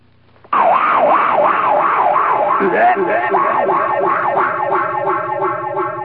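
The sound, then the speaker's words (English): A loud, wavering vocal noise imitating a fungus eating its way through a watermelon patch rises and falls in a steady siren-like warble, with a second overlapping warble joining partway through like an echo, continuing for several seconds. “And that was the sound of a fungi or a fungus or a fungi eating its way through a watermelon patch.”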